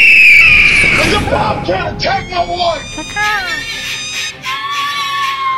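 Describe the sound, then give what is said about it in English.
A loud crowd cheering sound effect, cued on the Pinball Show to open its Pinball Market Trends segment, with shrill whistles and yells rising over a dense wall of excited voices that stays strong throughout. “Cue the crow.”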